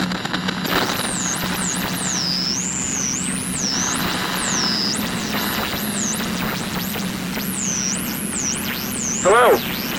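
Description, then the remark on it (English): CB radio static crackles and hisses steadily for the whole stretch, high above the fields of Wisconsin, beneath a flurry of high, swooping calls from a flock of geese and a steady rushing wind, with a brief louder burst near the end. “We hear the wind, a flock of geese, and the crackle of a CB radio.”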